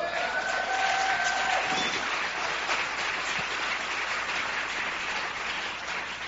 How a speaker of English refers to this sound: Come on, if you got it, give the Lord a hand clap.